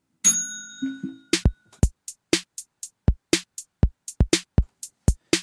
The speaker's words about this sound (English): Anyway, I'm going to ding the bell and we're just going to crack on.